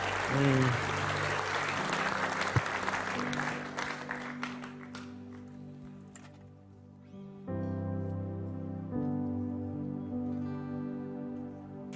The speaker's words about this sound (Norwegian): Vi har med oss Leif Hetland som skal forkynne i kveld, og vi skal si litt mer om han etterpå. En applaus for Leif her.